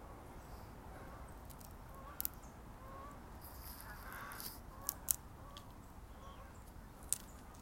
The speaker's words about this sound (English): I hear geese. Duck, duck. Ducks, ducks, geese flying overhead.